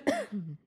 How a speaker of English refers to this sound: Podcast cough. Podcast cough.